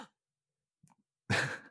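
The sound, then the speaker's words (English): A brief soft vocal noise, then a sudden loud, breathy gasp close to the microphone, lasting under half a second. No words are spoken. “Enter surprise gasp here.”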